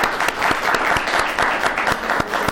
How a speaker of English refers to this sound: Let's go ahead and give him a round of applause.